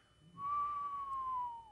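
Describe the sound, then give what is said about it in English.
A single sustained whistle, a clear steady tone that slowly drifts downward in pitch over about a second, fairly loud with no talking. “I'm not sure what that whistle was about.”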